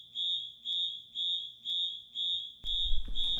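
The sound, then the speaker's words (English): A fire alarm blares in a steady series of loud, piercing electronic beeps, about five evenly spaced pulses, before a burst of rumbling noise joins in at the end. “I have interfered in the reality vector by turning on the fire alarm.”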